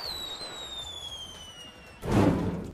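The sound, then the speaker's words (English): A pyrotechnic effect set off at the top of a set of stage steps during a filmed take: a thin, slowly falling whistle for about two seconds, then a loud, rough explosive burst that rumbles and crackles briefly before fading. No voices. “he was still at the top of his game, and still at the top of the steps when the explosion took place.”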